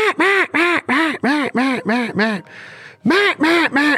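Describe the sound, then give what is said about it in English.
A rapid, steady series of nasal quacks blown on a duck call with straight air, mimicking a young hen mallard, loud, with a short breathy pause before a few more quacks resume. “And you could kind of get that younger hen mallard out there on the water as she sits there and just.”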